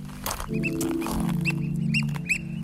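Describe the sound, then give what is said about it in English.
Oystercatchers call repeatedly all morning in shrill, piping bursts that overlap in a quick series, outdoors on Portland Island across the channel from Juneau, Alaska, over a steady low rumble of wind or engine noise. No one speaks. “Those birds you hear are apparently called oyster catchers, and they're pretty annoying. They've been yelling all morning.”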